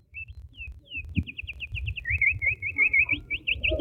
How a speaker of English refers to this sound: Those were authentic Indiana birds.